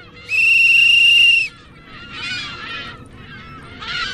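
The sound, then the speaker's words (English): A loud, steady whistle-like tone sounds for about a second, followed by bursts of harsh, overlapping squawking calls from a large flock of gulls on a salt pond near Fremont, over a low background rumble. “She's looking at a large flock of gulls on a salt pond near Fremont.”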